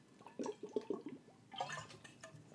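Quiet sips of water: a few wet mouth clicks and small gulps in quick succession, then a soft swallow and exhale, with no talking.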